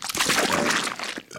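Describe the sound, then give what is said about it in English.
A loud, long, gurgling burp rumbles on for over a second, raspy and wet, then trails off abruptly. Nobody speaks during it. “That's all them dog farts in his lungs when he's eating a dog's ass.”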